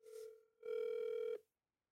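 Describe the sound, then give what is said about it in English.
A phone call ringing while waiting for pickup: two steady, buzzy mid-pitched ringback tones, a shorter one then a longer, louder one, separated by a brief gap, with no voices. “Ain't nobody answering today. You might got to wait till next week.”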